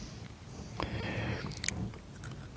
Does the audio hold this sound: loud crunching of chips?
yes